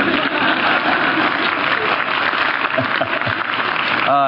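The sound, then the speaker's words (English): A crowd in Dallas applauds a biography of Dietrich Bonhoeffer at 9 a.m., dense clapping filling the whole stretch at an even loudness, with a voice starting to speak over it right at the end. “People applauding a biography of Dietrich Bonhoeffer at 9 a.m.”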